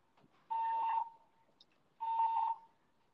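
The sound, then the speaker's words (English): A fire alarm going off during a test run sounds two loud, shrill electronic beeps, each about half a second long, separated by a pause of over a second, with no voices. “Oh, well, apparently my fire alarm is going off.”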